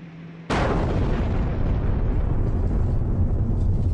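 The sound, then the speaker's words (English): A sudden, very loud bomb explosion bursts in after a brief hum and shakes the whole house, followed by a long, heavy rumbling roar that slowly loses its sharpness, with debris flying all over. No one speaks. “There has just been a huge explosion here.”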